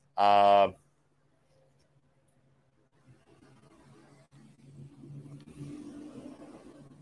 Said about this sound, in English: Wicked Weed Brewing truck passing us by.